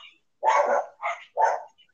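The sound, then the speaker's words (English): A dog barks three times in quick succession, the first bark longer and the next two short and sharp, loud with no talking over them. “Yeah, that's the opinion of the dogs.”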